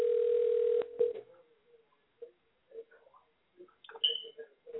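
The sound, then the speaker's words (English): A steady telephone dial tone hums for under a second, then a series of short, uneven beeps follow as a number is dialed, moderately loud with no talking. “So let's call him and see if he answers the phone.”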